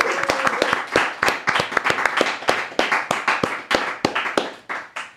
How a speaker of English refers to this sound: Merry Christmas, everybody. A round of applause.